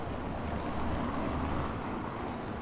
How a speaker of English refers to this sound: It's another car going by, so we'll just quieten down a little bit.